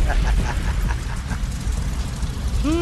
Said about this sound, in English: Oh, I love it. Explosion. I love it.